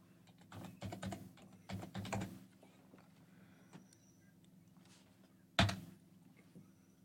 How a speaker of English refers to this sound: I'm over here just typing in shit that I don't even.